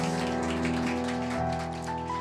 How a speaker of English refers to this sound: So Pastor Toby's just walked in, so I have to give a round of applause.